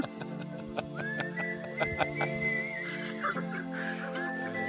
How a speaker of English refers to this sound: He's had this nose whistle going throughout the show